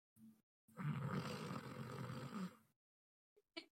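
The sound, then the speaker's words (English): A person imitates a loud snore: a short snort, then one long, rattling, guttural breath lasting about two seconds, followed by silence and a couple of faint clicks. “That's disturbingly realistic snore. That was a really good snore, yeah.”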